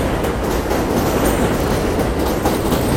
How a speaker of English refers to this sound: Hold on, there's a train coming.